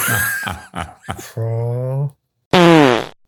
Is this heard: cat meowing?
no